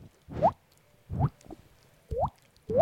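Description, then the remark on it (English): A voice imitates water dripping with the mouth, making four fairly loud plopping drips with rising pitch, spaced about a second apart against a quiet background. “I wouldn't say that's useless because that's make my that dripping sound with your mouth.”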